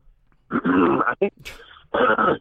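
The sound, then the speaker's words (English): Someone clears their throat in a few rough, gravelly bursts, with a short breathy rasp in the middle and a final guttural push. “I'm clearing my throat here.”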